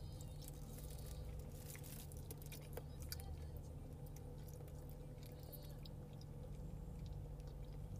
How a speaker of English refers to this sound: So I'm gonna sample this mac and cheese. Not like I don't know what it tastes like already.